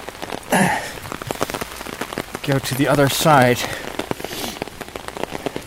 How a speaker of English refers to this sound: I'm walking underneath some big trees, which you can hear the huge drops of water.